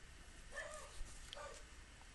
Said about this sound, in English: Well, there's Tyler in the background. I knew it wouldn't be long before my favorite little dog made his appearance on the podcast.